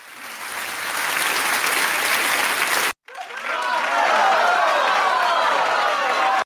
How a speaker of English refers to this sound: They made history. Let's get a round of applause for that.